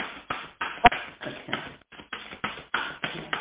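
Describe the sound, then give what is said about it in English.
Tarot cards being shuffled in a steady run of soft, papery riffles and taps, about a dozen quick bursts with one sharper snap near the start, no voices. “Okay, this is a long shuffle, but, you know, it's their rodeo.”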